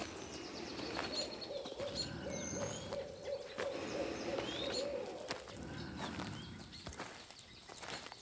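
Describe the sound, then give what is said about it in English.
A distant owl hoots in a soft, steady series of repeated notes, faint against a hushed outdoor morning background with scattered higher bird chirps, heard on a hike among pines in moist air after overnight rain. “And far off in the distance, I thought I could hear the occasional coyote or owl.”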